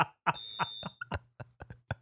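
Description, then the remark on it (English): A phone rings with a quick run of rhythmic electronic pulses and a low buzzing hum beneath them, fairly quiet, with no one talking. “I have a phone call.”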